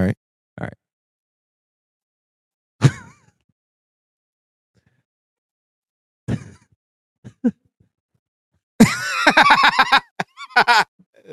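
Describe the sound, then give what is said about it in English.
A horse farts in a video: several short, low, rasping blasts separated by silence, followed near the end by a louder, higher, warbling burst of sound. “I didn't even see the horse fall. Did you hear it? I just heard the fart.”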